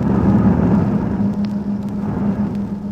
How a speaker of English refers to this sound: Fighters coming to look the place over.